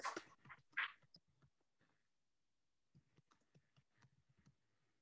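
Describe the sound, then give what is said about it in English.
Someone types on a computer keyboard: a quick flurry of loud key clicks at first, a short pause, then softer, uneven tapping resumes and continues. No one speaks. “I was just typing”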